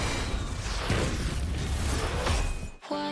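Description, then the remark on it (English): Fireworks crackle and boom in a dense, continuous roar, with a couple of sharper bursts standing out, before the sound cuts abruptly to a sustained musical tone. “We have fireworks.”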